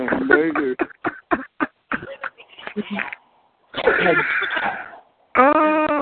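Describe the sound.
A voice makes a series of loud, choppy squawking bursts, quacky and bird-like, followed by a longer harsh squawk and a final drawn-out strained call, all nasal, heard over a phone chat line.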